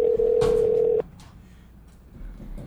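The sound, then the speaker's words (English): A steady electronic ringback tone from an outgoing phone call hums for about a second over speakerphone, then cuts off, leaving faint background noise with no one talking. “Point the phone over here. Please answer.”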